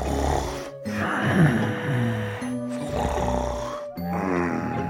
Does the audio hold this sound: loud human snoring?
yes